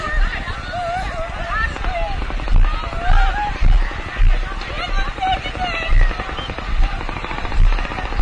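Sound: distant gunfire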